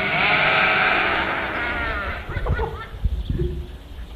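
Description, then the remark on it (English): A sheep lets out a long, loud, wavering bleat, trailing off into softer rustling and a few low thumps. “Sheep are dumb. Sheep are stupid. That's why sheep desperately need a shepherd, and not just any shepherd, the good shepherd.”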